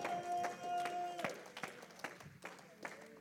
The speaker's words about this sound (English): If you've got the Holy Ghost, would you go ahead and clap your hands right now?